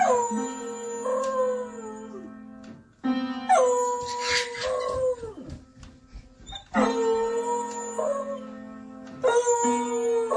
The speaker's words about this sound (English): It's a beagle. Oh, he's holding the note.